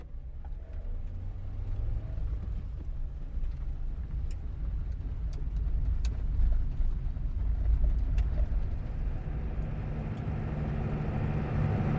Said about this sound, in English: we find the restaurant with a terrace that overlooks the bay and watch the big ferry go back and forth, arriving from Oban, car spilling out of its belly, others driving on board, and off it goes again, taking weary travellers back to the mainland.